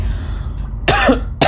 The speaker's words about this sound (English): Why I gotta cough now, bro? Like, golly.